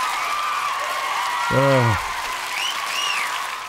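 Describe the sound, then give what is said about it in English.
A crowd applauds steadily throughout, with a short cheering shout partway through and a couple of rising and falling whistles near the end. “Let's give him a big round of applause, folks.”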